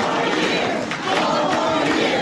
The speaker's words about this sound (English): And the crowd begins to chant four more years over the president